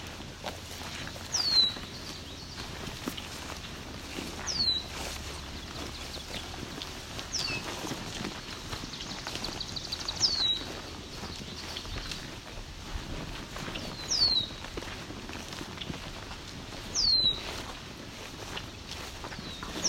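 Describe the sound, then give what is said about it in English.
Red-winged blackbirds in very tall grass call with about five short, sharp, high notes, spaced a few seconds apart, over a steady rushing background hiss. No one speaks. “Okay, some red-winged blackbirds.”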